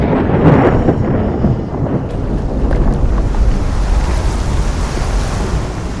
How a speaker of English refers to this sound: Either way, at roughly 5:30 p.m, whilst George Crick stood over the storeroom, on the overhead platform, with a written request for the hoop's repair in his hand, the vat shattered.